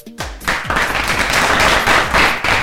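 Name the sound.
applause sound effect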